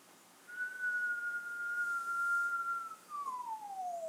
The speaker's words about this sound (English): That was a good whistle.